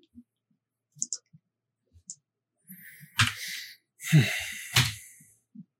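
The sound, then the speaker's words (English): Five dice being rolled in a tabletop role-playing game: a few soft scattered clicks, then a sharp clatter and a longer rattling tumble that ends in a final knock, with no talking. “I got five dice after the penalty.”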